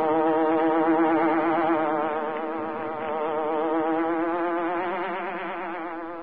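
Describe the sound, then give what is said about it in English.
A steady, loud insect-like buzz drones for about six seconds, a hornet sound effect for The Green Hornet, its harmonic-rich tone wavering slightly in pitch like a hornet in flight, with no voices. “The Green Hornet strikes again.”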